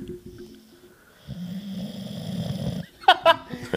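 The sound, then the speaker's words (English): A loud snore from a sleeping man rasps for about a second and a half right against the microphone, preceded by a softer breath and followed by a couple of brief vocal yelps. “He's going to start snoring, and it's going to be on the mic. He's already asleep.”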